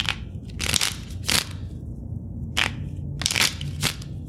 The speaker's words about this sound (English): But today, I'm going to perform that same exact card trick for the first time in over 250 years. To start, I'll shuffle the deck just a few times.